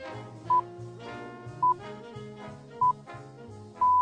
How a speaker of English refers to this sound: Yes, they have five beeps at the top of the hour instead of just one. Enjoy them all.